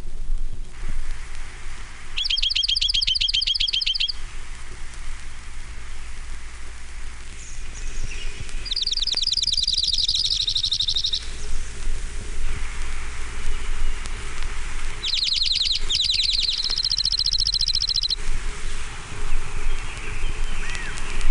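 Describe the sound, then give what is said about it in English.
A junco sings three separate dry, rapid trills a few seconds apart, each on a steady high pitch, carrying clearly over a constant low outdoor hiss. “Junko. Nine examples.”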